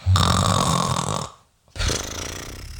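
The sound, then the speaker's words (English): A voice imitates the loud snoring of a man who fell asleep while watching a movie: two long, rattling, nasal snores separated by a brief silent pause for breath. “And I hate snoring.”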